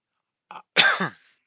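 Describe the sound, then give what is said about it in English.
A single harsh cough with a brief throaty catch just before it, heard alone in an otherwise quiet moment, from a person whose cough has lasted a couple of weeks. “Sorry, again, this cough has been torturing me for the past couple of weeks.”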